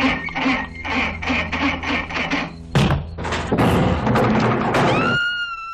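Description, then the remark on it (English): A diesel engine cranks without catching, a rapid series of rhythmic chugging bursts, then heavy clattering thuds and bangs, ending in a thin rising whine. No one speaks. “it's clearly like a diesel engine that won't start.”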